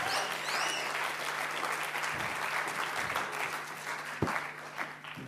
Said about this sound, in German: Danke viel, viel mal. Hey. Geben wir auch einen grossen Applaus. Danke. Wow.